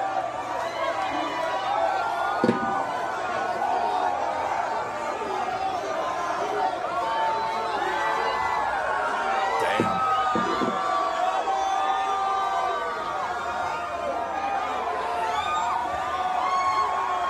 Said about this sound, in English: They were booing Donald Trump. Oh, they were booing? I thought they were saying boo Earns.